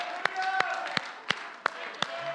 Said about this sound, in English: Let's give the Lord one more mighty hand clap, and somebody give a mighty shout. Come on, somebody give a mighty shout.